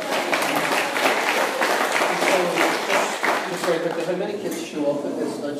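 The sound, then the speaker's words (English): An audience claps steadily and loudly, a dense crackle of many hands lasting several seconds, with a voice faintly audible beneath it toward the end. “There is a God who put them in that plan, and they know that, and clap if you want, you can clap, yeah.”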